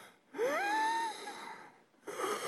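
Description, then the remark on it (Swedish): A labored, wheezing breath of an elderly woman who cannot get air, with a rising whistling tone that strains for about a second, followed after a short pause by the rasp of another breath starting. Fairly loud, with no talking. “Man hör att hon inte får luft.”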